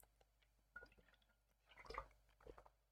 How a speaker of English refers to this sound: I took a sip. How do you like that? Now I don't warn you anymore. I just take it and then let you know after the fact. Suck on that.